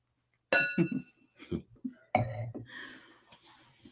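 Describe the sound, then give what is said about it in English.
Wine glasses of Black Girl Magic, a Black-owned wine by McBride Sister, clink together in a toast, a bright ringing chime followed by a second clink a moment later, with brief murmured voices in between. “So we're paying homage to women this month, and specifically Black women. So, all right. Cheers. Yeah. Cheers.”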